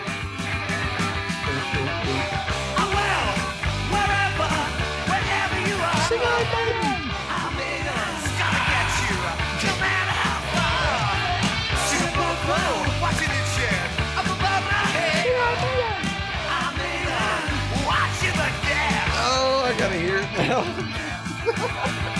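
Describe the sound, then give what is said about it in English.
A huge concert crowd in Southern California screams and yells nonstop, a dense, loud roar of voices that holds steady for the full twenty-odd seconds with no break. “Southern California, scream for me!”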